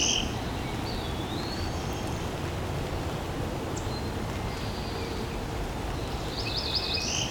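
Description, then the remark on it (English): A cerulean warbler, hidden among dense leaves, sings several thin, high, buzzy phrases ending in a rising trill, over a steady bed of insect and outdoor ambient noise. No one speaks. “Very difficult for me to see this bird. I'm trying to keep an eye in the direction where I hear it.”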